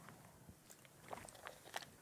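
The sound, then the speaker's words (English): Someone takes a quiet sip of a drink, with a few soft, wet mouth clicks and a brief slurp and swallow. No one speaks. “All right, let me take one more sip.”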